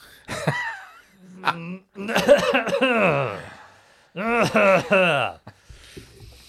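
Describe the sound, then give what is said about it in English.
A person clears their throat in several drawn-out, voiced bursts, rough and rumbling, with short pauses between them and no spoken words. “Clear your throat.”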